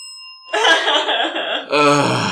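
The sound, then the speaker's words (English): A single bright bell ding rings briefly at the start, its clear tone hanging for a moment before loud, overlapping voices and raucous laughter burst in and take over. “No, I'm taking the bell from you.”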